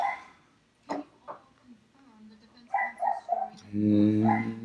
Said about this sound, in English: It's the neighbor's dogs. They're great.